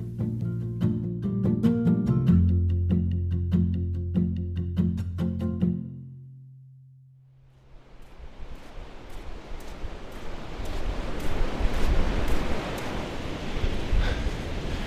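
A short stretch of music fades out, then Pacific Ocean waves wash steadily onto a shore just north of Whangarei Heads, Bream Head, a broad continuous roar of surf that swells and recedes, loud, with no voices.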